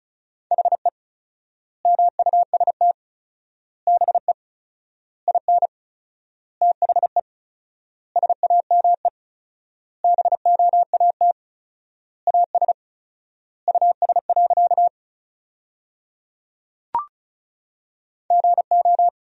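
Rapid Morse code tones at about 35 words per minute with 4x word spacing, sending sentences made from the top 500 words, a steady mid-pitched beep keyed in quick dots and dashes, grouped into bursts with long gaps between words and a faint click partway through.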